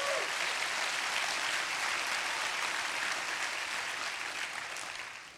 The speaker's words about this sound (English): Come on, you can clap your hands if you believe that.